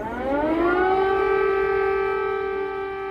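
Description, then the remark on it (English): Air raid sirens wail over Kyiv, Ukraine, in 2022 during the Russian full-scale invasion. The pitch rises in a long sweep and then holds a steady, sustained tone, loud and continuous with an open-air quality. “Air raid sirens in Kyiv, signalling that the full-scale invasion of a European country in the year 2022 was well underway.”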